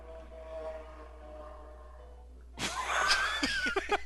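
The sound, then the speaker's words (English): A motor engine drones steadily at first, then surges into a loud, rough roar for the last second and a half as a motorcycle passes by. No one speaks. “A motorcycle went by.”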